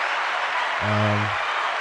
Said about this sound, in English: Give a nice clap for that one, I feel like.